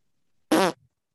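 A single loud, gassy fart bursts out for about a quarter second with a buzzy, sputtering tone, then trails off into a faint low flutter. No one speaks.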